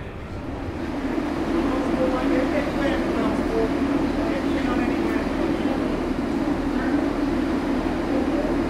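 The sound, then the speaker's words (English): A train rolls into Shrewsbury Station for passengers to board, with a steady, loud mechanical rumble and low engine drone, faint squeals and whines rising now and then above the continuous noise. “and our train is now coming into the station, ready for the passengers to board.”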